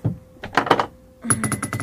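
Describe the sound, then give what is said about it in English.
Rapid clattering clicks and knocks of dice being rolled for a game, tumbling across a hard tabletop in two short bursts separated by a brief pause, with no one speaking. “What did you roll?”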